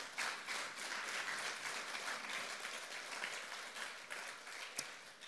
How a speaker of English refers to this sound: I'm glad you're all cheering for Cliff's sobriety of 40 years